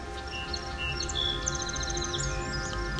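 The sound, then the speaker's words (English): A song sparrow sings a bright series of high trills and notes, with an American redstart's thin song overlapping toward the end, over a steady low hum. No voices. “sometimes the complex song of the song sparrow was heard, but often it was overlapped with other species, such as this one that has an American redstart song overlap at the end.”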